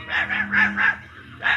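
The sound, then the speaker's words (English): A small dog, Toto, yaps four times in quick succession, pauses, then gives one more bark, moderately loud over a faint low hum. “Her dearest friend is her dog, Toto.”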